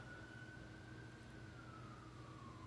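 An emergency siren holds a steady wail that slowly drops in pitch as it passes, over a low rumble of traffic, with no one talking.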